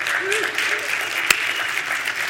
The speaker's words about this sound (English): I always forget how much the 11:15 service likes clapping.